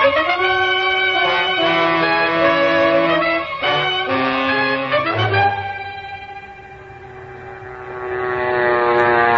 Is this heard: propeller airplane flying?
yes